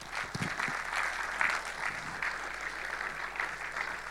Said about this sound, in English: Fantastic. I think you need to give him another big hand